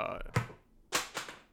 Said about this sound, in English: Oh, there goes all the professionalism out the window. I just spilled a whole big glass of water all over yes, everything. Yes, that's water when it falls. It's exactly what it sounds like. It's very sharp.